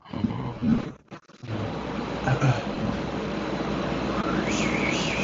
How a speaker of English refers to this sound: Is that the air or, like, an ocean? I think that's my AC. I think that's the AC.